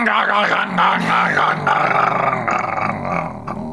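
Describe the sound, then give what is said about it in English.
A person vocally imitates the noise a Formula 1 car's engine made when the car ran out of juice: a loud, rough, growling drone that wavers and stutters in pitch, held almost continuously for about four seconds with no other talk. “Did you hear the, did you hear that noise that his engine made? Can you imitate it for imitate that noise for us?”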